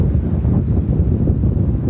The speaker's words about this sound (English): The sound of the waves